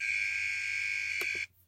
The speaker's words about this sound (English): And that's the buzzer. That's time for today.